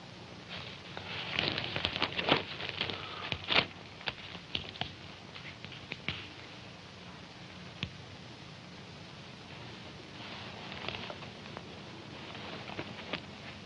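Dishes being washed: irregular clinks and clatters over a steady splashing, watery patter, busiest in the first few seconds, then quieter with scattered clicks. No one speaks.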